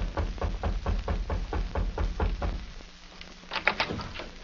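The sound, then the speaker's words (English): A man raps about ten sharp knocks on the wooden door of a little house in the frontier town of Pierre, Dakota Territory, loud and rapid in a steady rhythm, followed by a brief quieter rustle. “A man walked briskly up the steps of a little house in the frontier town of Pierre in the Dakota Territory and rapped on the door.”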